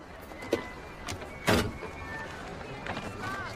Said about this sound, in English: Excuse me. I know you didn't think anyone would catch you, but you just slammed your door into my car.